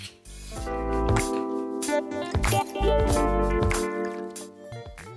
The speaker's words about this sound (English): So you simply fill a highball glass with fresh cubed ice. Add 50 ml of malt riot.